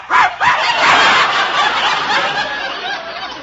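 A dog named Prince barks loudly, a quick burst of yaps that run together into a steady, excited stretch of barking with no speech.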